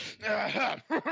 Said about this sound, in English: Clear my throat. I became an old man over the weekend. I just make sounds like...